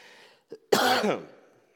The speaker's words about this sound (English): I apologize for my cough.